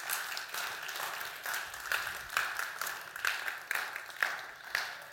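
An audience applauds steadily for several seconds, a dense wash of clapping with louder, evenly spaced bursts rising out of it, heard at a moderate distance with no one talking.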